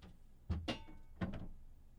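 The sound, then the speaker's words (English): A studio door swings shut with a dull thunk, followed quickly by a second knock and then a third muffled bump, fairly quiet, with no talking. “Yeah, I just don't like the studio door open when I'm...”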